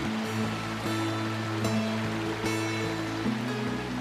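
Steady rushing water of the Patalo Jhango (Hell's Fall) waterfall, a continuous dense hiss that never lets up, with low sustained tones shifting every second or so beneath it. No one speaks.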